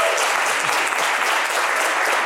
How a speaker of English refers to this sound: So can you give him a round of applause? Thank you.